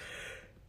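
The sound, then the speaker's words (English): A person yawns, a breathy, airy exhale that swells briefly and then tapers off into quiet, with no talking over it. “You just yawned.”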